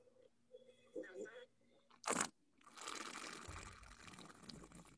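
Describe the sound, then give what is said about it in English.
A sharp slurp of wine during a tasting is followed by several seconds of steady, wet swishing as the wine is sloshed around the whole mouth, loud and continuous until the end. “We actually swish it, you know, it gets around the whole mouth.”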